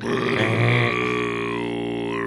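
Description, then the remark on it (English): A voice imitates the horn of Gondor, standing in for a doorbell rung by a pizza delivery guy. It is one sustained, low, buzzing tone held for about two seconds, steady and fairly loud, with a slight wavering bend in pitch toward the end. “So when the pizza delivery guy rings the doorbell, it sounds like the horn of Gondor down here in the hut.”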